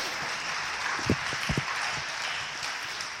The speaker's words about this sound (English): Go ahead and grab a seat. Let's give them one more big round of applause.